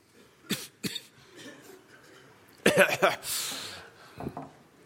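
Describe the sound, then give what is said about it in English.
Audience members cough at scattered moments, a few sharp single coughs followed by a louder cluster of overlapping coughs and throat noises, with faint background murmur between them. “Lots of coughing out there. I'm one of them.”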